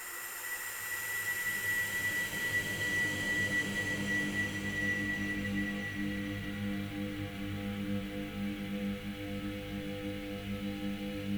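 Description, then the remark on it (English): A steady, humming electric drone plays alone for the whole clip, with a buzzy low hum and a thin high whine that fades partway through, much like a lightsaber's hum. “And it's almost a little bit like the lightsaber sound from Star Wars, you know, that kind of thing.”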